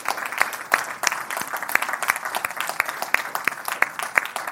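A church audience claps steadily throughout to honor single moms, dense overlapping handclaps forming a continuous applause with sharp individual claps standing out, sustained at a fairly even level without talking.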